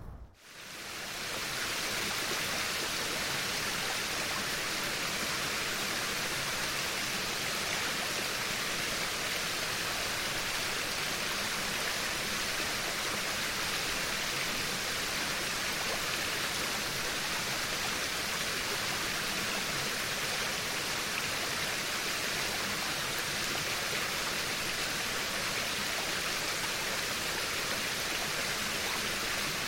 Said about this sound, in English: Actually, water's actually moving from the right to your left. And it was, I just thought it was so calming. What river? It was the river in Solvang, actually. Up in, near that waterfall? Remember that waterfall?